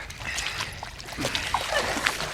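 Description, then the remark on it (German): Feet slosh and splash through shallow, muddy water along the shoreline of the Moorsteiner See, a lake, in a steady series of wet steps over very muddy ground, fairly loud, with soft dribbling and splatter between strides. No one speaks. “Na, ich denke, wir warten besser an der Uferlinie durchs Wasser. So sind wir schneller als durchs Schilf.”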